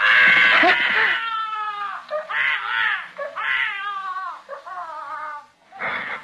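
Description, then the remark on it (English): A boy yells and cries in an apartment building, in a series of loud, drawn-out wails that rise and fall in pitch, separated by brief breaths, unaccompanied by talk. “When a kid started to yell.”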